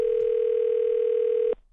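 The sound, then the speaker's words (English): A steady, continuous telephone dial tone at the start of a prank phone call hums at a single mid pitch for about a second and a half, then cuts off abruptly, leaving near silence. “it's time for the nephew in today's prank phone call”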